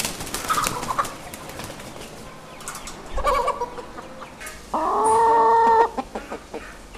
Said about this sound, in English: There are about 150 birds in Madani Halal at any one time. The ducks are the loudest. The quails, the cutest. And the roosters, well, they look the meanest.